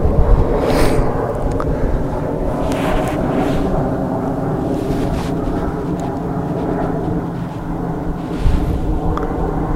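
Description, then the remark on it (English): A steady, low droning roar of an airplane flying overhead fills the whole stretch, fairly loud and constant, with gusty wind buffeting the microphone now and then. “Airplane.”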